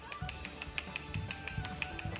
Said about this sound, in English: Finger snaps. Yeah, you got it. Yeah. Yeah, finger snaps. Yeah. Well done. I don't know how many he had in a minute. Lots though. Oh, that's hard to do.